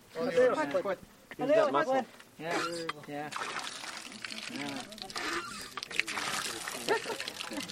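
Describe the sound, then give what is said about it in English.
A hand water pump in front of a new home on the Navajo Nation, built with Flexcrete, squeaks a few times in quick strokes as a 73-year-old woman tries it out, then water gushes out in a steady splashing pour that continues to the end. “tries out the water pump in front of her brand new home, the first on the reservation built with Flexcrete.”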